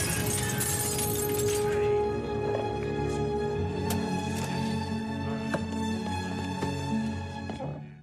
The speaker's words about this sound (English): because he does get caught and he's at the police station. She comes to speak to him and he shatters the glass partition.